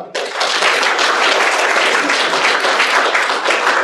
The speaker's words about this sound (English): Well, I think all it remains for me to say is to give a quick hand clap for the speaker, and it's very nice to see you here.